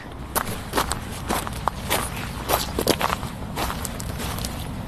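Footsteps crunching and squelching over seaweed and stones onto a beach, a steady irregular series of crisp crackling steps with wet rustles between them, moderately loud and with no talking.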